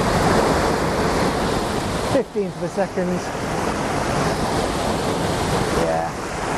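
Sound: waterfall rushing water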